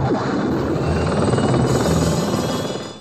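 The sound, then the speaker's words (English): A film helicopter's steady, loud turbine whine and rotor roar fills the whole stretch, dense and continuous, easing off slightly at the very end with no voices. “Have you figured out what that helicopter sounds like yet? What the turbo sounds like?”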